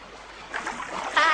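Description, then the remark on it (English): Hands dip into cold pond water with fish, making a few soft splashes and sloshes that grow louder toward the end, with a faint steady background hiss. “Put your hands in. It's not too cold.”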